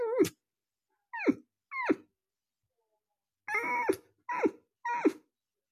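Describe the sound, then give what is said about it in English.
A person imitates a dog's whine, like a dog needing to go outside and scratching at the door, with six short, high, falling cries: three spaced whimpers, a pause, then three more in quick succession, fairly loud with no speech. “They're less howls and they're more like, you know, when the dog needs to go outside and scratch at the door.”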